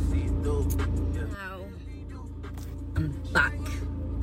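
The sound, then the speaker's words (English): A steady low rumble fills the inside of a car where a person is still sitting, with a few brief, muffled knocks and shifts on top and the hum of traffic. “like, look at me. I'm still sat in my car because I know as soon as I go in that door, that's it.”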